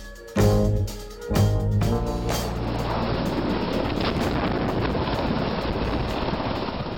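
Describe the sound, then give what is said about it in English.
A military helicopter in Mississippi right after Hurricane Katrina, dropping off water, ice and meals ready to eat, roars with a low droning engine tone throbbing briefly before giving way to a loud, steady rush of rotor wash and wind, with no voices. “That's a military helicopter in Mississippi right after Katrina, dropping off water, ice, and MREs, meals ready to eat.”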